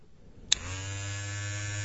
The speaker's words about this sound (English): That's a shaver. Yes. Although, I guess it sounded like something else.